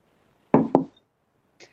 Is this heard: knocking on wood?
yes